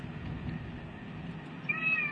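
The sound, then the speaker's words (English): A pet cat named Floyd lets out a single short, high-pitched meow near the end, preceded by a steady low background rumble with no one talking. “Stop crying.”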